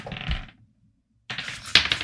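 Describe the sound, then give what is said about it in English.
Dice clatter and rattle across a hard tabletop in two bursts of sharp clicking, rolled for a perception check, separated by a brief silence, with no voices. “Did we buy some new dice that work?”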